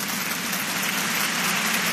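An applause sound effect: a steady wash of crowd applause, dense overlapping claps forming a loud, even crackle that holds constant for the full two seconds with no voices.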